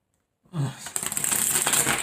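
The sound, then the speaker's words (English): A deck of tarot cards is shuffled for a reading: a brief rustle, then a dense, crisp riffle of rapidly flicking cards that runs steadily to the end, with no one talking. “Let me go ahead and do a quick shuffle.”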